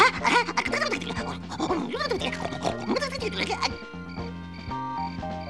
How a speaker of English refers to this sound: Come on, Gleek, wake up! You're snoring louder than an earthquake.